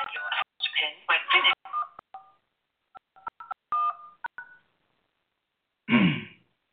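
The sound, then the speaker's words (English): Several short telephone keypad tones beep in a quick, uneven sequence, clear, with brief snatches of voice before and after the dialing. Someone is dialing in by phone to a team call on Blog Talk Radio. “I'm working on dialing in through the phone so you don't have to hear the kids in the background.”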